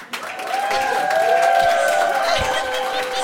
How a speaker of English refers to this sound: I feel like whenever I say anything, you play that clap thing.